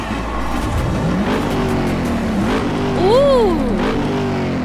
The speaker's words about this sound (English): Gentlemen, start your engine!